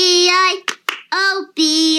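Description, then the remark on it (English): Two sharp hand claps land between drawn-out sung notes, clapping along in rhythm with the children's song 'Bingo' in a Simpsons clip, fairly loud. “Added extra clap, not college material.”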